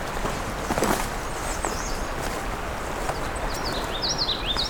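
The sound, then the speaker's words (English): A common yellowthroat sings a couple of quick, rolling phrases, faint, over steady crunching footsteps and rustling, at Scugog Lake in the morning. “Another yellowthroat.”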